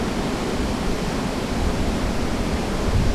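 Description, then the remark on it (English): A steady, powerful roar of Connecticut River water pouring through a dam that generates power for the city of Holyoke, a dense unbroken rush that holds the same loudness throughout, with no voices. “And this is the sound of the Connecticut River, the water falling through the dam, and at the same time generating all the power for the city of Holyoke.”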